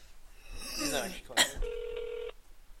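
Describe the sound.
An outgoing phone call to congratulate a friend: a sharp click, then a single steady electronic ringing tone lasting under a second. Indistinct voice-like sounds come just before it.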